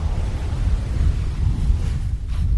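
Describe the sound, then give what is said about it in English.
Waves wash up on a long sandy beach below a resort with oceanfront villas, in a steady, rumbling roar, with a brighter hiss of surf swelling briefly toward the end. No voices are present. “You can hear the waves coming up on the beach, and one of the things about your resort, we are close to the beach, but your villas overlook the beach”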